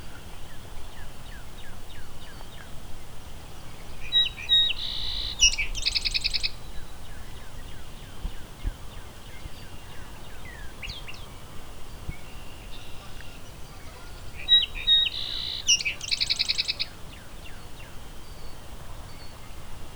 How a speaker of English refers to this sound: There's a nice loud song sparrow.